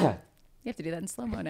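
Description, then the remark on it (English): A short, forceful sneeze bursts out right at the start and fades quickly, followed by a moment of quiet before a person starts talking. “Bless you.”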